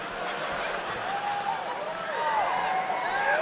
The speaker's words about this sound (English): You can tell there's women cheering.